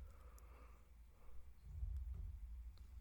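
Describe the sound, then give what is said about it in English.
A long, drawn-out yawn: breathy and muffled, fairly quiet, ending in a low, rumbling exhale. Nobody speaks. “I'm yawning. Sorry. That was a massive yawn.”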